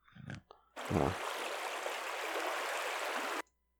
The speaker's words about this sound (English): Water.